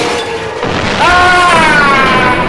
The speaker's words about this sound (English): He destroyed the satellite! No! Looks like the explosion killed him.